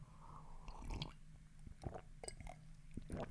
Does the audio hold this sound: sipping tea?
yes